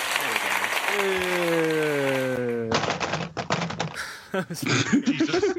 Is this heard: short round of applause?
yes